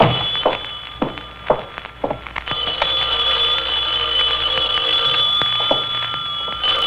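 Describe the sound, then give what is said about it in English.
A telephone rings steadily, a continuous bright ringing tone that begins after a few sharp knocks and clicks as a door is unlocked. “Knew that phone would be ringing.”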